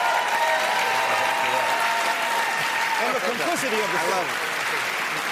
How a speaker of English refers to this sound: I love the way all the white people cheer for themselves getting thrown out of work.